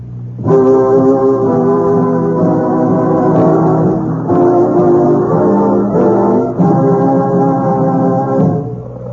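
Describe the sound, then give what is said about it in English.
The horn of an old, broken-down second-hand car blares in long, loud, droning blasts, three sustained honks running almost back to back with brief breaks between them, and no voices. “They did tell me that their pal, the Kingfish, well, they borrowed an old, broken-down second-hand car so they could drive to the studio.”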